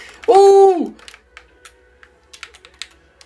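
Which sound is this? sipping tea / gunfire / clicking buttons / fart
clicking buttons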